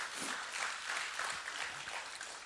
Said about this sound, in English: Boy, your worship was great this morning. You guys did a really good job. Y'all give them a hand clap.